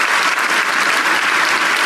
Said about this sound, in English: Give God praise. If you're going to clap, give Him praise. Give Him real praise.